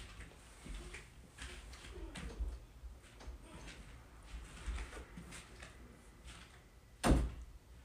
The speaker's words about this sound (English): Close my door, babe.